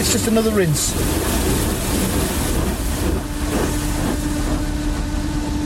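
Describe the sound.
Steady, dense hiss of a fine water spray rinsing a car inside a car wash mechanism, coming towards the rear of the car, continuous throughout, with a brief voice near the start and a low mechanical hum joining later.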